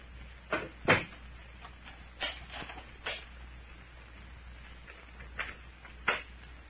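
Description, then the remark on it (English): Two doors thud shut and are locked, latches clicking in a short, irregular series of sharp knocks and clacks, with a faint background hum and no talking. “Did you lock both doors, Captain? Right.”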